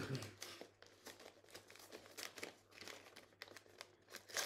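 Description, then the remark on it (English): Wrapping paper crinkles and rips as a gift is opened, in a quick run of papery bursts, a steady rustling and tearing that keeps going for several seconds, with faint voices in the background. “Do I open these at the same time or? Open them however you please.”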